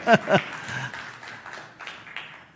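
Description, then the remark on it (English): An audience claps: a couple of sharp, loud claps open, then scattered clapping continues as a softer, uneven patter that slowly fades. “Yeah, you can clap to that.”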